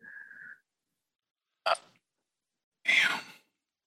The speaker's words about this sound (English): As you all turn around to head back and take a brief pause, you do hear the crashing waves behind you, and you can hear this faint grunting sound as if someone is pulling on something heavy.